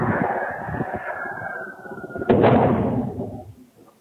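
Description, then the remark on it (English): Recorded by a Ring doorbell camera: a rushing, whooshing noise builds for about two seconds as an object falls from the sky, then a single loud bang as it crashes in a neighborhood at night, followed by a rumbling decay that fades within about a second. No one speaks. “So obviously you guys can't see that, but just from that sound, I think it's pretty undeniable that something fell from the sky and crashed in that neighborhood that night.”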